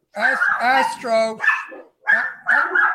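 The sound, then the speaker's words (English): A dog barks several times in quick succession at someone who rode by on a bicycle, with loud, high-pitched yelping barks and brief pauses between bursts. “Stop that barking.”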